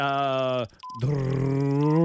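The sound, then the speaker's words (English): A voice imitates a race car engine during a 60-second sound-effects guessing game, with a sustained, buzzy, harmonic-rich drone, briefly dropping out, then returning as a lower, steady revving hum that slowly climbs in pitch. “Race car.”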